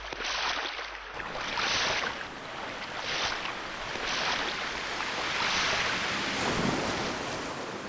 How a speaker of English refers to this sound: A sudden swell rushes salt water into the shallow moat that is formed around it, washing the sand from its silver belly.